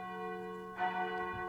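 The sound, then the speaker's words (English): A deep church bell tolls, its long ringing hum sustaining before a second stroke lands near the middle, rich overtones swelling and slowly fading in a somber, solitary knell. “That says death knell. For whom the bell tolls.”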